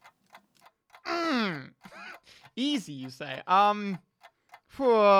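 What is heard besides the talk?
ticking clock countdown timer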